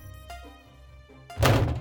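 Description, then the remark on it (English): A few light knocks give way to one heavy thunk as something strikes a metal console fitted with a scanner hard enough to dent it, the impact ringing briefly. No voices. “Another dent appeared in the console.”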